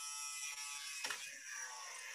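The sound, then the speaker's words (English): A small electric water pump motor with a shower head, set in water, whirs steadily with a high, buzzing hum, continuous, with a brief change in tone midway as it shifts under load. “with a shower head and a water pump that's dripping its water”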